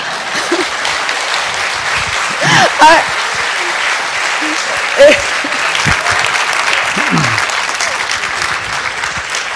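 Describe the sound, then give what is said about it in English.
Steady audience applause for Aung San Suu Kyi at a meeting, a dense crackle of many hands clapping throughout, with a brief murmur of voices and a few louder bursts poking through the ovation. “So ladies and gentlemen, please show your appreciation to Aung San Suu Kyi.”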